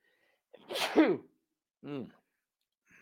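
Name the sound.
sneeze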